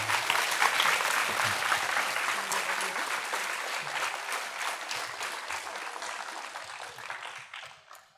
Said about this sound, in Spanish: Un aplauso, por favor.